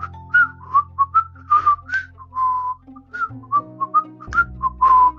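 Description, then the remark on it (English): Someone whistles a bright, bouncy tune, quick notes hopping up and down over a soft steady musical backing, with no talking. “Throw your hat up and start a whistling.”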